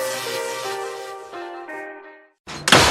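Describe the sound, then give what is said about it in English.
A sustained musical tone fades into a brief silence, then a loud, sharp door slam bursts out at the very end as kids slam a door. “Hey, you kids, quit slamming my goddamn door.”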